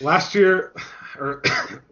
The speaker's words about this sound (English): Yep, the cough is back.